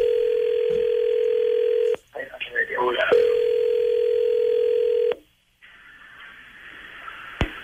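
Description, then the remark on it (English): A telephone ringback tone sounds while a call to someone's mother goes through: two long, steady electronic rings with a short burst of muffled voice between them, then a click and open-line hiss. “Let's call your mom.”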